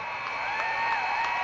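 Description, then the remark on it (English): Loomis fans at a basketball game stand up and applaud their team with 3 seconds to go, a dense, continuous wash of clapping and crowd noise that holds at an even loudness throughout, with a high, bright edge to the sound. “Here comes the Loomis faithful standing up to applaud their team with 3 seconds to go, and they're going to win it.”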